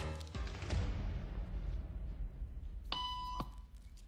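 A single electronic beep, a steady tone lasting about half a second, sounds near the end over a low room rumble, with a couple of dull thumps earlier on; in a social conformity experiment, the beep is the signal for people to stand up.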